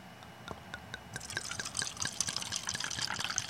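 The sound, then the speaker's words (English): Wine, a Sonoma old vine blend, pours and splashes into a plastic cup, with bright, bubbly trickling and irregular drips that build in fullness over a few seconds, moderately loud. “I'm pouring in plastic tonight.”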